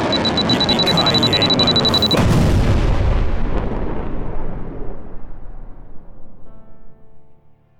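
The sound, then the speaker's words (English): A bomb explosion sound effect for an anti-gluten bomb detonated outside the range of the planet: a steady high-pitched alarm tone over loud roaring noise cuts off as a single deep, heavy boom hits, then a long rumble slowly fades out. “The anti-gluten bomb was detonated safely outside of the range of our planet.”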